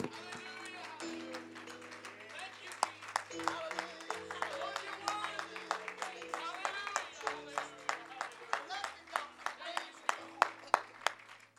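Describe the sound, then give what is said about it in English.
An audience gives the Lord a loud hand clap of praise, a steady run of sharp hand claps over sustained organ-like chords, with voices mixed in underneath. “Let's give the Lord a great big loud hand clap of praise, because he's worthy today.”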